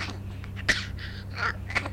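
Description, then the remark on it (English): A baby girl gives two short, sharp coughs about a second apart, with small breathy vocal noises in between, all fairly quiet over a steady low hum. “Uh-oh, she's got a cough.”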